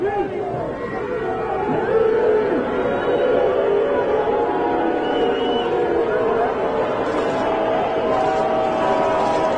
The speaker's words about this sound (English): Now, you would probably have to do a poll of the fans. Why were you booing exactly? I would guess that a little bit of it was, all right, that's enough. You're killing us with this stuff. It's been going on for half an hour.